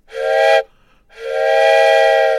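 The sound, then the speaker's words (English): A loud steam whistle sound effect, the 'Wizdumb whistle' played from a button, sounds twice: a short blast, a brief pause, then a longer sustained blast, each with a bright, harmonic, slightly hissy tone and no talking. “I have the Wizdumb whistle.”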